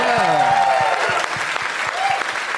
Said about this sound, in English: I got a woo. I'll clap for that. A single woo.